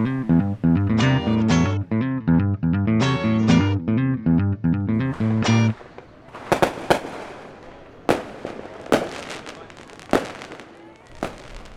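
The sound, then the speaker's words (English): Loud tonal music plays for several seconds, then gives way to fireworks let off from rooftops in Medellín, Colombia, for the Alborada celebration on 1 December: a string of sharp, irregular bangs and crackling pops, some loud, with echoing rumble between blasts. “This was the scene here on the rooftop last night. Yeah, this is the celebration of Alborada, and it's really controversial here in Medellin.”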